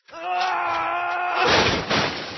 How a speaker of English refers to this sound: you knocked over my bongos.